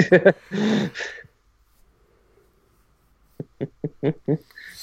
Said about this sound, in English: Sorry to yawn.